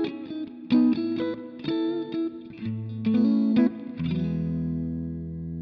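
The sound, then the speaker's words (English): An electric guitar plays a short run of chords and notes through a Super Reverb amp with a warm tone and reverb, several crisp attacks before a final chord rings out and sustains, with no talking. “Super reverb right now. Like, that's the sound.”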